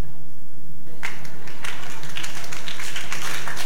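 A crowd clapping their hands together as they are told to ask God for a second chance, starting after a brief quiet moment and continuing as a dense, irregular patter of many overlapping claps over a low steady hum.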